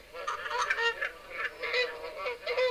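A flock of geese honking continuously, with overlapping nasal calls rising and falling in a busy, clamorous chorus.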